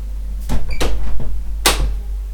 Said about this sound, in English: Shutting my door.